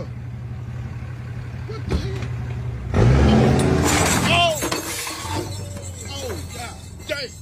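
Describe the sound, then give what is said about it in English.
A truck engine roars and strains as chains hooked to a car's motor and connected to the back of the truck rip the engine out, loud clanking and tearing metal bursting mid-clip over a steady engine hum, with a voice speaking briefly. “All right, this brother has just now hooked chains to the motor. And the chains are connected to the back of his truck.”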